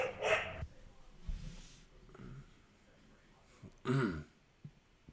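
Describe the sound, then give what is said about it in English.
A dog barks loudly, two sharp harsh bursts a few seconds apart with fainter noises in the quiet gap between. “wow, that dog is loud. Is that your dog?”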